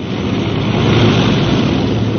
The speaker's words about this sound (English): Well, there's life, there's hope. Those engines are coming alive again.